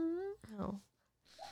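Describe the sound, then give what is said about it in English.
A female pet dog having a bad dream lets out a thin, rising whimper, then a single short, muffled bark in her sleep, followed by a pause and a faint soft sound. “Our dog is having a bad dream.”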